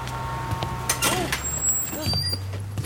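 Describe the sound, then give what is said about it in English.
A city bus idles with a low engine rumble while its air brakes let out short, sharp hisses, fairly loud, with a brief squeal in between. “ran out and jumped on a city bus.”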